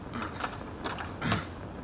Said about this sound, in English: I can't get the door open. Are we trapped here?